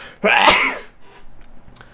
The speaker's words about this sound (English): I have to sneeze. Hang on.